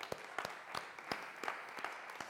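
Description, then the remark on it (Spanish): A group applauds a person who, the afternoon before, accepted Jesus as Lord and Savior for the first time: a dense crackle of clapping with a few sharp claps standing out in a steady, quick rhythm. It is fairly quiet overall and no one speaks. “Vamos a un aplauso.”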